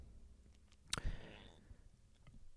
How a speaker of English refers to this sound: excuse me, that was burp number 5. Damn, I'm rolling this episode with the burps.